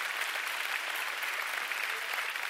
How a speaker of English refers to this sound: Come on, give God a big round of applause.